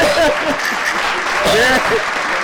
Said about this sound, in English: You got to wait for these claps.